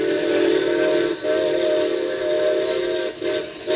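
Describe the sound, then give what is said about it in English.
A loud steam train whistle blows for an upcoming curve and grade crossing, in long, sustained blasts with steady layered tones, briefly dipping twice before sounding again, unbroken with no voices. “Hey, Bob, we're coming to that curve. Yeah, and then that crossing. Better whistle for it.”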